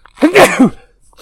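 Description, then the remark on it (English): A single loud sneeze with a sharp intake and explosive, breathy burst, lasting under a second, followed by quiet. “You have to excuse me a second. I have to sneeze.”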